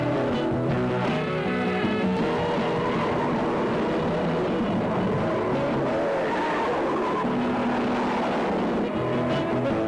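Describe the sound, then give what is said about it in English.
A car engine revs loudly and steadily, holding one gear with a sustained droning whine that rises and wavers throughout, continuous with no pauses. “Isn't there more than one gear in this car?”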